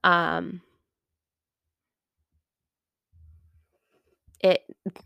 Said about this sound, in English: Sorry, my dog is in here. He's snoring.